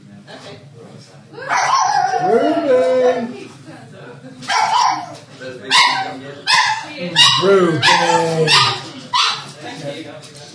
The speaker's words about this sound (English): I can't imagine how pleasant that bark is for everyone listening at home.